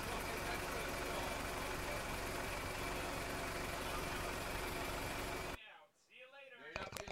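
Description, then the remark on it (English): A car engine churns and sputters loudly for several seconds as it struggles to start, then cuts off abruptly, followed by a voice speaking. “The car doesn't sound good.”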